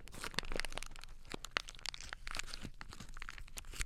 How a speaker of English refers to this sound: Like, you'll see people take a piece of paper and they'll crinkle it like this.